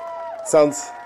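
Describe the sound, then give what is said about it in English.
A brief burst of excited crowd cheering with a loud whooping shout in the middle, over a steady murmur of voices, lasting about a second. “Sounds like we're at a baseball game, right? Everyone's excited for the sports.”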